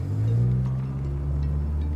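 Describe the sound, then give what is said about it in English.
A car engine hums low and steady as the speaker's mother's car moves off with the speaker inside, a continuous rumbling drone with no talking. “got into my mum's car.”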